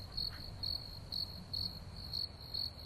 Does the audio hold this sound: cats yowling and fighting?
no